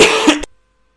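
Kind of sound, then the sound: human body sound, cough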